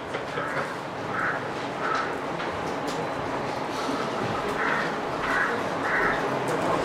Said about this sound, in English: I think the crows have a lot of questions, but don't know what they're asking.